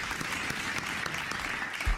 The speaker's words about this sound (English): You know, we'll get a clap in there. Oh, yeah.